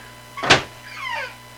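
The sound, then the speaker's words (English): A door is kicked shut with one loud, sharp thud, followed by a brief, faint, high squeak that slides downward in pitch. No one speaks. “I heard a thud. That was her Navi kicking shutting it. The door.”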